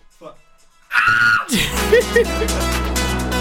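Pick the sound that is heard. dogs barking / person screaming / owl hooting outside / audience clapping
person screaming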